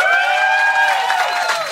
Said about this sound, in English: Clap now as per convention.